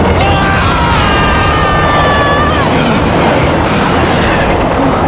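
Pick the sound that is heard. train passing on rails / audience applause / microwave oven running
train passing on rails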